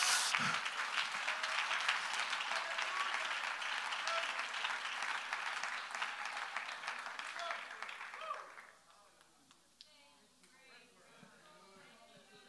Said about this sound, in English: Come on, let's clap our hands to the Lord.